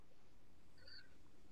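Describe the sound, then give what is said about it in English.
A single short, high-pitched meow from an orange cat sounds briefly near the middle, fairly quiet, over a low steady background hum with no talking. “I'm going to scream, and the cat's digging his claw at my shoulder.”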